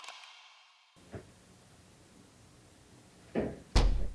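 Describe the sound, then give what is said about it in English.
A door in an old house creaks open by itself with a soft, drawn-out groan, then a faint knock and two sharper wooden thuds, the last one loudest, against a quiet background with no voices. “That can open. It's an old house, dude.”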